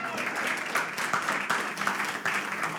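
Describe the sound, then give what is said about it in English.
A crowd applauds steadily, many hands clapping in a dense, continuous patter at moderate volume, with a faint murmur of voices beneath. “I just get excited in group settings sometimes, and I start clapping, and I'm like, no one followed me.”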